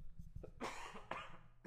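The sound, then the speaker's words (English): Two harsh, raspy coughs from a sick person, the first longer and rougher, the second a shorter burst about half a second later, with some low rumbling noise underneath. “Comes over coughing all over my shit.”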